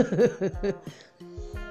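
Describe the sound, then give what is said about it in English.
A fairly loud series of short, throaty coughs in quick bursts, a brief pause, then two more coughs. No one speaks. “Here we go with the coughing again.”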